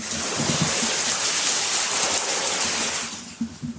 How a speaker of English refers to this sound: It is a rainy night here in Hawaii. I don't know if you can hear that.